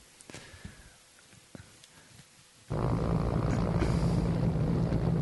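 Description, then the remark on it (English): A few soft knocks and faint sounds give way abruptly to a loud, steady helicopter roar with a deep throbbing rotor drone, sustained to the end. The helicopter, with a camera fixed under it, flies over an Israeli cargo ship in the Red Sea during a Yemeni raid, landing Houthi fighters on the ship. “It's a camera fixed under a helicopter.”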